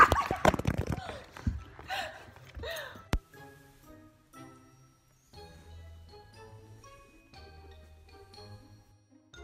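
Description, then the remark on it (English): A puppy whimpers and yips in a quick flurry of high cries over the first few seconds, then goes quiet while soft tinkling, music-like tones carry on underneath. “You walk in and boom, puppy.”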